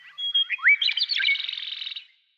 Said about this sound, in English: Birds, they can make an incredible variety of sounds